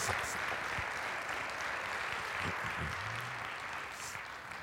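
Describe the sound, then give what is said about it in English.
A church audience gives a hand clap of praise, steady, dense hand clapping that holds at an even volume throughout, with faint murmuring voices underneath. “Come on and give my hand clap of praise in this house today.”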